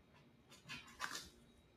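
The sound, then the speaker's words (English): A dog whimpers softly, letting out two short, high-pitched whines about half a second apart, with the second slightly louder. It sounds fairly faint, with no talking. “Oh, your dog is come.”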